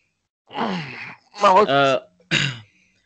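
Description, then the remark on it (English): A person clears their throat in three rough, voiced bursts over about two seconds; the middle one is the loudest and longest, with a groaning, tonal rasp, and no talking. “I'm sorry, I just clearing my throat.”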